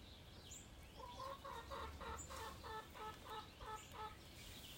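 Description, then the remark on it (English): A single chicken, trying to climb up a quarter pipe, clucks repeatedly in a steady run of short, evenly spaced calls over a low outdoor rumble on a nice day, with no one talking. “The one chicken.”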